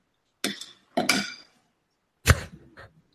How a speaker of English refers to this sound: What did he just like make pasta? What happened here? I think he just slapped a spoon or something.